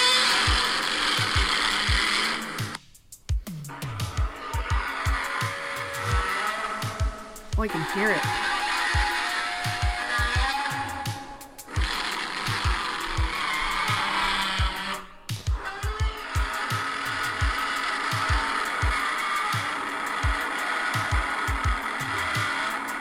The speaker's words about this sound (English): That is fucking sick, knowing that's a resin-covered leather glove over a bass. It sounds... It literally, that is a sound, those are sound effects that pierce into you. Like, you never forget them.